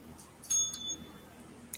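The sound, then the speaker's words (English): A small bell dings once, its bright high tone ringing briefly and fading within about a second, fairly quiet against a soft background with a couple of faint clicks. “I heard a bell. I've heard a couple bells, all I'm saying.”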